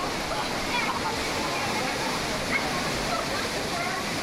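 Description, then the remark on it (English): Loud, steady rush of churning water with splashing, a continuous roaring wash that stays at the same level throughout, like a rapids ride. “Oh man, it's dripping.”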